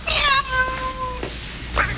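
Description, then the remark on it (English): A man, Turbo in the film Breakin' 2, imitates a cat with a single drawn-out, wavering, loud meow at a fluffy white kitty in a rich family's mansion, followed by a brief quieter sound near the end. “Yes, but the kitty doesn't seem to like it when Turbo meows at him.”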